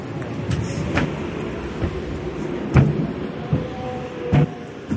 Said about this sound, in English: we'll get through this revolving door here.